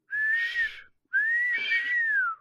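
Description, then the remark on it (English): Two breathy whistled notes from a person, each sliding gently up and down, fairly loud with a short pause between them and no talking. “But you're whistling. You whistle.”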